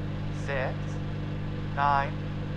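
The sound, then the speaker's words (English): A microwave oven runs with a steady, low electrical hum that holds unchanged throughout, while two brief voiced sounds rise over it, one early and one near the end. “Your microwave is... Yeah, give it a second.”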